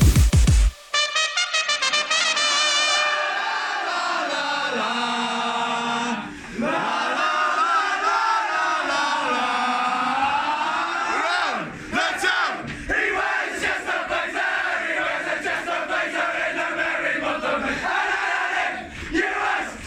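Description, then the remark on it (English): A large crowd cheers and roars loudly and continuously for about twenty seconds, with shouts and yells rising and falling in a dense wall of sound. No one speaks clearly. “Yes, time for some lockdown cheer.”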